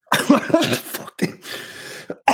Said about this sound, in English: Oh, shit, that made me cough.